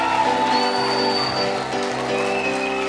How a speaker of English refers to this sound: One more time, give Jesus a great big hand clap all over the room.